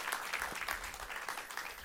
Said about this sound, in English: Jesus deserves more than one hand clap, right?